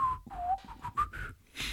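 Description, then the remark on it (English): A person whistles a short melodic phrase of several connected notes, the pitch gliding up and down between them, alone, with no talking. “Yes, whistle. Yeah. Whistle, whistle. I'm not very good at that.”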